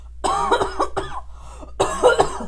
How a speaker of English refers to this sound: I'm about to start coughing.